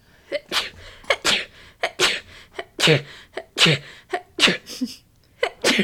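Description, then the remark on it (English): A long, rapid run of sneezes, more than a dozen sharp bursts one after another, loud, with no talking in between. “Bless you. Thank you.”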